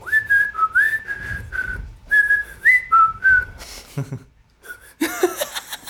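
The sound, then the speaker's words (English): Someone whistles a song melody, a string of clear sustained notes in short phrases, then breaks off into laughter and breathy chuckling at the end. “Can you whistle …?”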